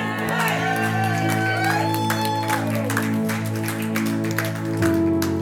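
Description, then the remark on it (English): An audience shouts a loud, lively "amen" together at the end of a prayer, with scattered claps and whoops over a sustained organ chord that shifts near the end. “In the mighty name of Jesus, and everybody shouted a mighty amen.”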